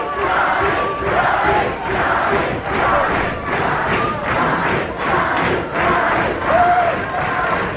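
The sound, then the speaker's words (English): A large crowd at a WCW wrestling event in the Disney MGM Studios Worldwide Arena roars and cheers steadily, the noise swelling in rhythmic waves like chanting, with scattered shouts and whistles rising above the dense wall of voices. “A look at our great crowd on hand here at the Disney MGM Studios Worldwide Arena.”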